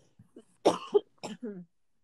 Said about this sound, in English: Sorry, coughing.